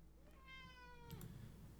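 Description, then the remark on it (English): A single drawn-out cat meow, clear, with a rising then falling whine that ends in a short throaty sound; no talking. “And with that, I think it's time for my cat to meow directly at me”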